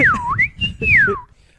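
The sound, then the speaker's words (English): A person whistles a short, swooping melody: a dip, then a rising glide, a held high note and a falling slide, with low rumbling noise underneath and quiet after. “I just whistled a bunch.”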